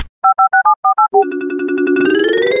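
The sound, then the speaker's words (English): A quick run of about seven short electronic keypad beeps, then a loud, steady flip phone dial tone that drones on and grows slightly brighter at the end. “Should we check the flip phone? Let's check the flip phone, shall we?”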